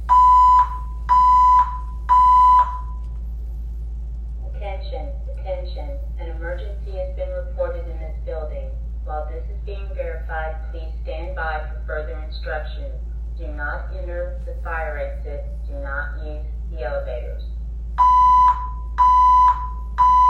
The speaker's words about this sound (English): It was Saturday morning, 2:36 a.m. in the morning, and suddenly I hear this droning in my ear. Attention, attention. There's been a hotel alarm. Security is looking into it.